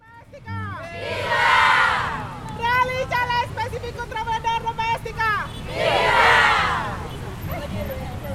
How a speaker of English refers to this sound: We are slowing down traffic on Kamora Road, one of the busiest streets in Timor-Leste's capital of Dili. About 100 people, mostly women, are marching together, holding banners and signs up to the passing cars and motorbikes.